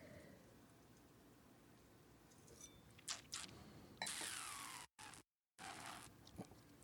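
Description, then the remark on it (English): Quiet mouth sounds of someone sipping an intense, smoky, juicy wine: a few soft wet slurps and a longer airy draw, then a brief silence and faint swishing. No one speaks. “And I'm going to take a sip.”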